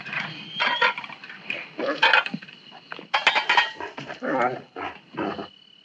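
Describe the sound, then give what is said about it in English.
A trembling dog whines in a run of short, uneven, high-pitched bursts, about eight over several seconds, with a faint steady hum beneath. “Why is the dog trembling?”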